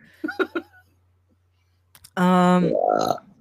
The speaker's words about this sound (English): Well, I literally cannot stop. It's COVID. Can't stop, won't stop. It's not COVID. That's a burp. I can't read it and then I burp.